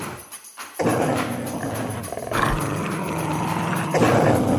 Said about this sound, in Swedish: Och nu ska vi lyssna på ett klipp där två övergivna hundgäng som har bott på den här ön i flera år, de har upptäckt en färsk soppåse och de börjar genast att gruffa.